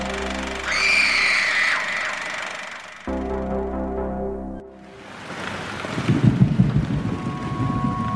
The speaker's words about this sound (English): There was a storm.